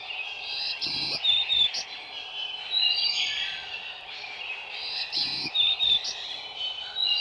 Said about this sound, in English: More rapid and less buzzy than the black-throated blue are songs of black-throated green warblers. This might be translated as Simmy, Simmy, Simmy, Susie.